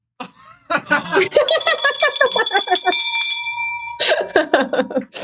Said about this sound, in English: We broke the bell for you. That's what happens when you get a six-figure deal.